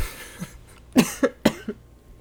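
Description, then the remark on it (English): A quick run of three or four dry coughs from a woman with a slight cough, sharp and fairly loud, bunched within about a second, with no talking around them. “has a slight cough, so every time she laughs, she's gonna start dry heaving.”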